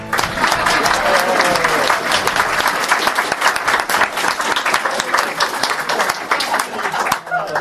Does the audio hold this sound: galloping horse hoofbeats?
no